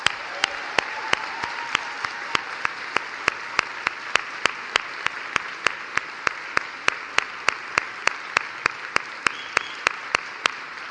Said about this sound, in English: And I thank them for the time that I had with them today. Can we please applaud them?